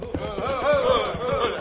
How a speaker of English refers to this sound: Hey, look, Walker, the Mavericks try to stampede a horse.